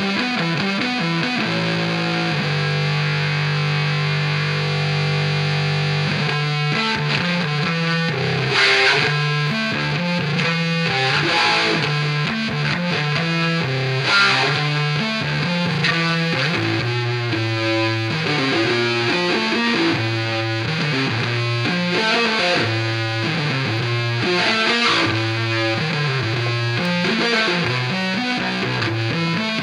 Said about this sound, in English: Is this just the opening to a song? No, this is a bass solo.